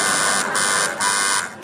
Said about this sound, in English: Okay, Did everyone buzz? I tried to buzz then. Who was quicker than... Was it you? Basically, it was the three mentions of America that led to a frenzy of buzzing